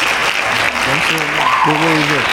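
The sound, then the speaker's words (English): A crowd breaks into steady, dense hand clapping that fills the whole clip at an even loudness, with voices calling out and cheering over the applause. “Give me hand claps on that.”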